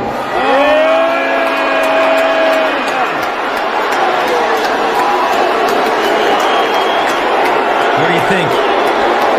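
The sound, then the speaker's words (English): A large audience at a stage show roars continuously as the richest man in the world is introduced, a dense wash of booing mingled with cheers and whistles, loud and sustained, with a sharp whistle or shout cutting through early on. “No, there is booing, but I think there's also cheers.”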